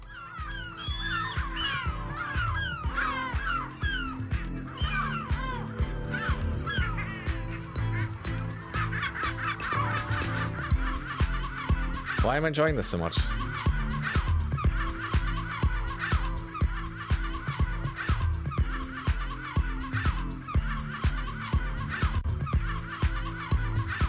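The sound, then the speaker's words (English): Squawking seagull calls chopped and looped over a steady, punchy electronic beat, loud and continuous throughout, with a brief spoken comment from someone partway through. “If I was a seagull, I'd be kind of going, "Yeah, I'm into this."”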